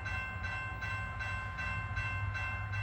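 A fast express train rumbles loudly along the tracks, wheels clacking in a steady rhythm beneath a sustained, droning horn-like tone, with no voices.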